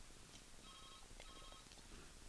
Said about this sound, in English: That's actually my fax machine that's ringing, so it'll only ring a few times, then it'll quit, and I apologize.